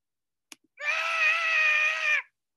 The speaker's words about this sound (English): the sound file from the screaming goat that plays randomly